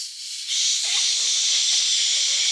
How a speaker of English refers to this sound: The point I'm making is all frequencies of sound are sampled. And what that sounds like to you is a hiss.